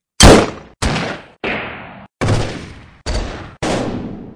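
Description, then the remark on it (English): Six sharp, loud gunshots fire in quick succession, each a hard crack with a brief ringing tail, spaced about half a second apart with no voices around them. “Six rapid shots, followed by screams and thuds, and then silence.”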